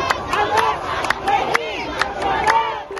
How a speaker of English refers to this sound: In response to the explosion, people across the Middle East took to the streets in protest, including in Beirut, the capital of Lebanon.